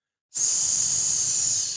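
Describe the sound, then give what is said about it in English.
A sustained, loud hiss made by a human voice imitating a snake, starting abruptly after a short silence and holding steady for over a second, heard alone. “It's like the snake that slithers.”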